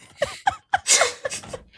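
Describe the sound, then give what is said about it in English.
A voice imitates a squeezy toy with short, high squeaks: three evenly spaced chirps, then a louder breathy, hissing burst, followed by a couple of fainter squeaks. “Did you squeak a squeezy toy into the mic? Yes, it was my vocal cords that I squeezed into the mic.”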